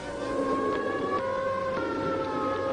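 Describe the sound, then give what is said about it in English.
A civil defense siren sounds its takeover signal in Times Square, New York, during a civil defense drill for Operation Alert; a loud, sustained wailing tone with a steady pitch and buzzy overtones, droning on without pause and with no voices over it. “Less than 2 minutes after the takeover signal, the streets were cleared.”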